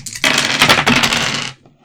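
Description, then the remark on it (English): Dice are rolled for a flattery skill check, clattering and rattling across a hard table for about a second, a dense burst of bright clicking taps, then settle into silence. “You give me a roll on flattery. So roll the dice.”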